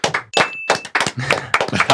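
A short round of applause from a small group, dense irregular claps that stay loud for about two seconds, with a brief high ringing tone early on.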